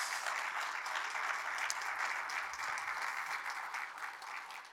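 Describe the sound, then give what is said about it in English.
A crowd applauds three people steadily, a dense wash of many hands clapping at a fairly even loudness for several seconds without any voices over it. “Can you guys, whether you're at home or whatever, especially in here right now, can you guys just give a big round of applause for those three people?”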